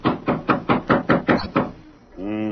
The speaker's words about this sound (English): Here's York's door. I'll knock to let him know we're here.